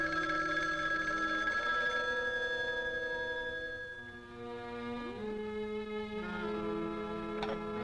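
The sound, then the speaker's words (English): A telephone bell rings steadily and fairly loudly for several seconds, a bright, sustained metallic trill with tonal sounds shifting underneath. No one speaks. “She gets up and moves away, but then the phone rings.”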